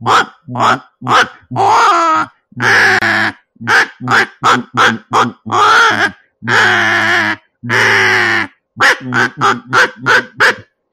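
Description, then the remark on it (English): A teal duck call blown with cut-down air to imitate diving duck barks of bluebills, redheads and canvasbacks: a loud series of short, raspy grunting notes in quick bursts, with a few longer drawn-out calls in between, and no talking. “Now, if you really have to cut down the air, and you kind of have to give it a little bark to it, but it sounds bluebills, redheads, canvasbacks.”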